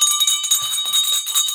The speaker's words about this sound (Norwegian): Og det ikke uten grunn at du ringer med bjella I dag